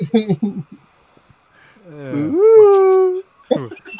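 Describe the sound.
A person imitates a wolf howl: a loud voiced cry that swoops upward in pitch and holds for about a second, with brief talking just before and after it.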